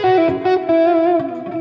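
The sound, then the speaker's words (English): Sustained electric guitar notes, played in C sharp minor, ring out with a smooth, effected tone, each note trailing into a wash of reverb and echoing delay that blurs one into the next. “What I want you to notice is that I've got a little bit of reverb on, and I've got a little bit of delay.”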